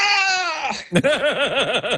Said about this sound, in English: And a titan in the sound world, Ben Burt, put together a collection of all of the movies this sound effect has been used in. And it's basically the sound of a man yelling, a man falling and yelling.